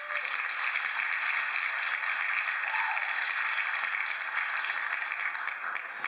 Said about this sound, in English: So shout out to the Bucks gaming. Shout out to the Bucks gaming. Let me give you a round of applause too as well.